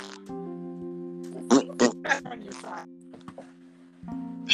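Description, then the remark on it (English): A person blows buzzy, sputtering raspberries close to the microphone, imitating fart noises in a few bursts with short gaps, loud and up front, with a low droning hum underneath. “I'm making fart noises because the mic is making fart noises.”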